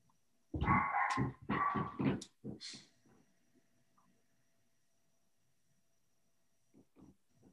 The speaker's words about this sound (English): And can you hear that in the background, my dog? A little bit.